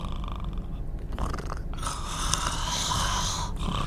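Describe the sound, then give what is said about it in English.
A car engine idles with a steady, deep purring rumble that stays loud and even throughout, while a brighter whirring tone rises over it partway through. No one speaks. “Wow, you hear that baby purring?”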